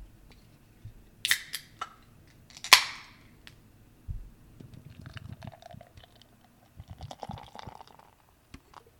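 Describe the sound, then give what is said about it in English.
A couple of sharp cracks and a brief hiss as a can opens, followed by several seconds of steady, bubbly pouring as milk stout runs from the can into a Spiegelau stout glass. No one speaks. “I'm pouring this one from a can into a Spiegelau stout glass.”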